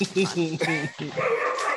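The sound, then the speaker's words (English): Penny the dog barks and yelps in a quick, agitated burst of several high, strained cries over about two seconds, fairly loud. “if y'all heard that, that's Penny, that's Ellen's dog, and something happened”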